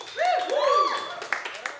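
An audience applauds a performer being introduced, a dense wash of clapping topped by rising and falling whoops and cheers from the crowd that fade toward the end.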